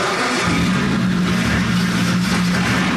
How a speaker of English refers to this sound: His name is Steve Bush, and he told Channel 2 Action News that this is no ordinary Ferrari. It sounds unlike any street Ferrari you've ever heard. It is a race engine, and it was built to be a race engine.